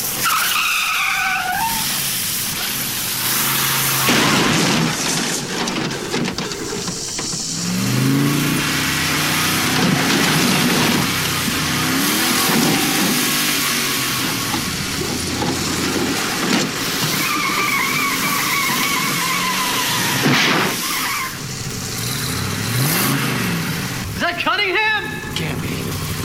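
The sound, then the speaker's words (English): Tires screech in repeated skids while a car engine revs and roars loudly throughout, with bursts of acceleration and sliding squeals, and voices shouting over the din. “My car! Come on! We're not finished yet!”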